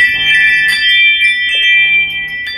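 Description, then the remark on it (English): A doorbell chime rings out alone, bright high tones sustaining and repeating in a few struck notes, fairly loud and with no talking over it. “Somebody's at my door.”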